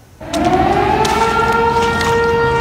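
A loud flood warning siren sounds from south of the Canadian border, heard at Huntington Village in BC. It wails steadily, its sustained tone rising slowly in pitch over a low rumbling background, with no voices present.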